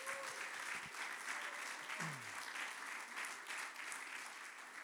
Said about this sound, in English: Can everybody clap for the Lord right there? Thank you.